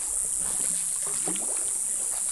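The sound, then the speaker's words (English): A small canoe being paddled up a still, black-watered stream in the jungle, with soft watery movement beneath a constant high, hissing drone of cicadas and a few brief, wavering tonal calls. “Paddling by small canoe up a stream in the jungle, the water is black and still.”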